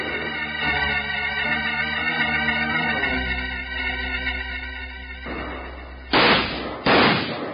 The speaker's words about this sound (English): Keep shooting, man. They can't hold out now forever.